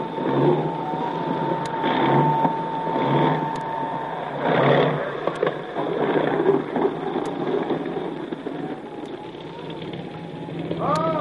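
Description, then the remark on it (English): A small motorboat's engine, carrying Jim Bradley out to a ship attacked by a submarine, drones steadily over the water, a rough, churning hum that swells and eases as it draws nearer, with wind noise buffeting in the background. “Jim Bradley is on his way out in a small boat to tell you the whole story.”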